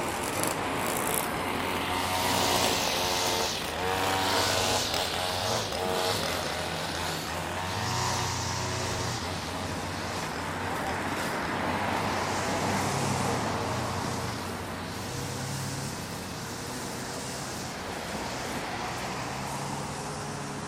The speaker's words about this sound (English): Traffic and strimmers. Doesn't get more real than that, does it?